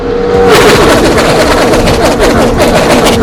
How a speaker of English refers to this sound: There's the cars.